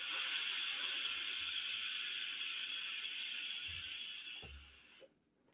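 A long, steady, breathy hiss of vapor being exhaled from an electronic hookah, fairly loud, fading out near the end with a soft low bump before quiet.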